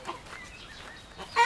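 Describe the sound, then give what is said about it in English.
Chickens, a flock of 20 kept with other animals at a home in New Zealand, cluck in short, scattered bursts, their calls steady and fairly soft until one loud, sharp squawk rises at the very end. No one speaks. “They moved here from Auckland looking for a place to fit their menagerie, including a horse, a pony, a pair of pigs and goats, numerous cats, one dog, and 20 chickens.”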